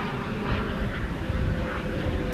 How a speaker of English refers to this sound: Excuse me, helicopter going past. Just wait for a second. We live near Essendon Airport. That's the police helicopter.